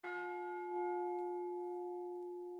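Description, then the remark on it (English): A single bell strike rings out clearly with a bright metallic tone, then sustains and slowly fades over a couple of seconds, like a ship's bell, rung in West Central Florida. No one speaks. “when you hear this bell, that means that we are one child closer to our goal for our family, our community here in West Central Florida.”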